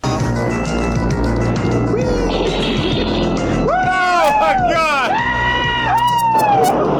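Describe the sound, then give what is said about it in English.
A film car scene from The Dukes of Hazzard: a steady loud roar of engine and crashing noise, then from about four seconds sweeping, rising and falling whines as the car tears through a bush that lifts it like a ramp and launches it, with voices mixed in. “When they hit a bush, that bush is going to lift that car.”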